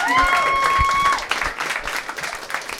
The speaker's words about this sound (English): Guys, let's give Einstein a big round of applause.